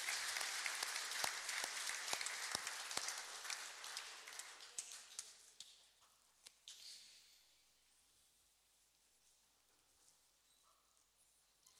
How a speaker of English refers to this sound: So yeah, give them a big clap. Thank you.